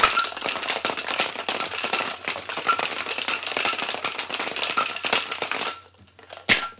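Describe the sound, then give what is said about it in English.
A cocktail shaker rattles hard and steadily with a big 2-inch ice cube for about six seconds, a dense, rapid clatter that stops, followed by one last sharp knock. “That big 2-inch ice cube takes a lot of work.”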